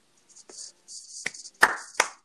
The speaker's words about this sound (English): I'm going to applaud this.